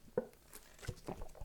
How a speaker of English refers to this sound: Let me take a sip of coffee really quick.